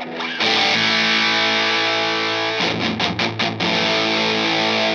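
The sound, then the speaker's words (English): A heavily distorted electric guitar played through a modified MXR Distortion Plus pedal rings out with thick, sustained chords, broken midway by a quick burst of choppy rhythmic strums before the saturated sustain returns, loud with no talking. “He had a modified, as I understand it, Distortion Plus MXR pedal. Okay. And that's what you hear here.”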